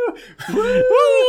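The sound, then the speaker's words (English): A person howls like a werewolf, two sustained, rising vocal wails, loud and drawn out with a brief break between them. “We do a werewolf-style blind-by this week. I need to get my howls out because it's the only werewolves you'll be hearing during this discussion of this podcast.”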